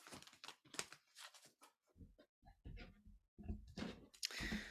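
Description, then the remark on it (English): Papery riffling and rustling from a deck of oracle cards being shuffled for a card reading, coming in irregular bursts with brief pauses and a denser flurry at the end; fairly quiet overall and no one speaks. “Shuffling the cards.”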